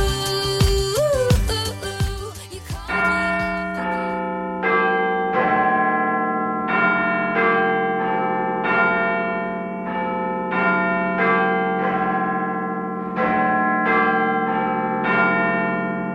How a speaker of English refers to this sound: Come on, Big Ben. There we go.